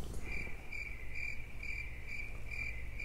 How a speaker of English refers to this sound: Crickets.